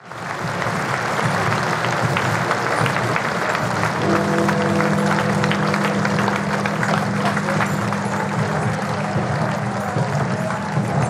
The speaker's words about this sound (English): The Queen was brought in a procession from Buckingham Palace to Westminster. Guns were fired in Hyde Park and Big Ben tolled every minute, and the crowds applauded as the Queen passed by.